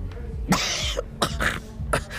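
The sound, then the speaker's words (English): A woman coughs several times in quick succession, three harsh, raspy bursts, with the first the longest and loudest. No speech accompanies them. “Marshal Pierce coughed, then pressed the button of her climate regulator.”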